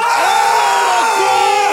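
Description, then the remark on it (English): Four grown adults in an apartment scream together at the top of their lungs in an attempted wolf howl, a loud, sustained, overlapping shriek that holds steady for under two seconds with no talking. “That was just four grown adults in the apartment screaming at the top of their lungs.”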